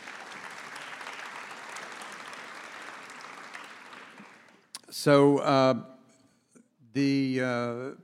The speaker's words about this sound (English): So please give it a round of applause, if you will.